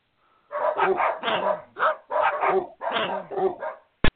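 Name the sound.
many dogs barking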